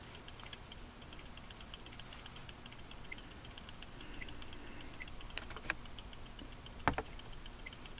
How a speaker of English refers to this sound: It's about a ticking sound. But it is quite annoying. And the fact that I could have ended this, but I didn't, and now there's a ticking sound.